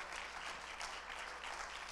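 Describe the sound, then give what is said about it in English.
An audience claps together in praise to the Lord, in steady, dense applause, many hands overlapping into a continuous bright patter that holds at an even level for the whole two seconds with no voices on top. “Then give the Lord a hand clap of praise.”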